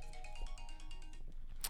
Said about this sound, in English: I'm sorry, I had to turn off that phone. That was my co-host Tim Adams calling, probably trying to figure out what the heck's going on today.